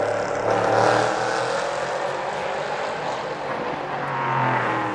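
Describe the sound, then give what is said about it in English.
A steady, loud roar of race car engines fills the scene, with pitch shifting as the cars brake for the Rettifilio chicane, a dense wash of mechanical noise with no voices. “Under braking again at the Rettifilio chicane.”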